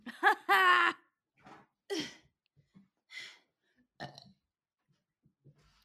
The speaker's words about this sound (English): That feels good. I will say when I burp, it feels really good, like in my chest.